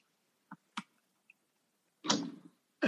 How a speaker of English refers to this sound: Don't be smacking me, bro. Yo, don't be smacking me.